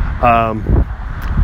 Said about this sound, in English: Sorry if it's windy, guys. It's just one of those days. I'll keep talking loudly so if you hear me. But if the wind kind of bugs you in this episode, I apologize.